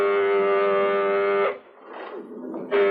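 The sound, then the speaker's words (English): A loud, steady security alert siren from a base blares a buzzy, sustained tone, signalling security alert procedure, cuts out for about a second of muffled noise, then sounds again. “Why, it's a signal for security alert procedure.”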